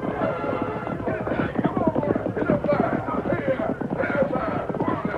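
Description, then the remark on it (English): Horse hooves gallop in a fast, steady drumming rhythm that pounds on without a break, fairly loud, with a busy, rumbling texture. “We're gaining on him now. His horse has slowed down a lot.”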